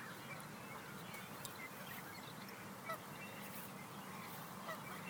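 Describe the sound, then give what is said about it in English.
Geese honk repeatedly at a small man-made lake surrounded by fields, around 7 in the morning, their calls overlapping in a noisy flock over steady outdoor ambience, with a few louder honks standing out. “There's lots of fields and a ton of geese and different birds, and sometimes I can see some rabbits as well.”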